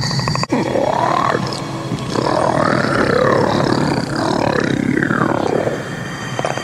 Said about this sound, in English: And the mandible and the roar and the mouth, oh, it's so good.